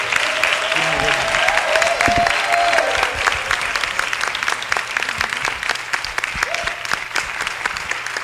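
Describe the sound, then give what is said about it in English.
A standing audience bursts into sustained applause, a round of applause to the Lord Jesus Christ for a gift to the body, dense rapid clapping holding steady and loud throughout, with a few faint tonal notes and murmurs early on. “I want you to give a round of applause to the Lord Jesus Christ for this gift to the body,”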